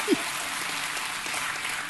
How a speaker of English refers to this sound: Maybe a little applause would be good. Come on.